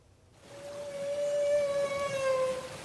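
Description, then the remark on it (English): A long, sustained tonal whale call, a humpback vocalization during bubble net feeding off the north coast of British Columbia, holding a steady pitch with rich harmonics, rising in strength and continuing for a few seconds against a faint underwater hiss. “It's called bubble net feeding, a coordinated approach by humpback whales to catch their next supper.”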